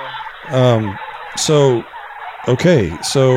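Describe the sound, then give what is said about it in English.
A turkey gobbles loudly in repeated bursts, each a rapid, warbling run of harmonic notes, with brief gaps between the calls and no talking. “Who would eat a turkey?”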